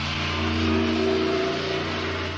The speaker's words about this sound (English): Now, I can't hear you for the truck.